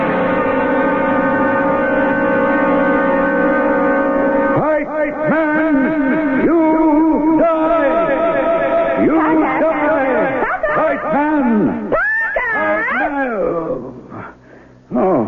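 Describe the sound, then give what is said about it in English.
Loud, warbling reverb from a tape deck that is being set up: smeared, echoing tones that swoop and bend in pitch, almost like howling voices, running continuously for about fifteen seconds before cutting off. “Oh, just fussing around with the tape deck. Pretty near got it all set up now. That was the reverb you were hearing.”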